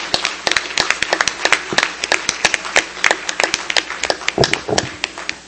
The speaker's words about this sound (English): So all of you who have won these prizes, I mean, hey, let's give a big round of applause to all of our vendors. These are some great prizes.